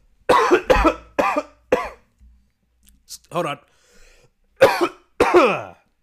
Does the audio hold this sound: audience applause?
no